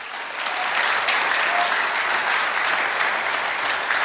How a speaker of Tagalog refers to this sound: Lakasan niyo yung palakpak.